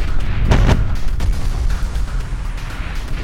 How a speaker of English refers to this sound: So many things just keep smashing into the side of the ship.